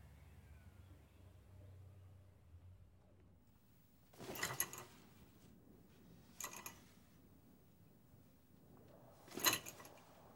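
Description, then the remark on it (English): Three separate scraping bursts of a chair moving across a floor on its own: a longer scrape, a short one, then a final loud scrape. Fairly loud against a quiet, low background hum, with no talking. “The chair, it's moving on its own?”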